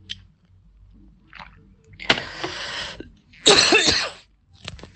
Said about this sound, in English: Sorry. I've had a bit of a tickly cough.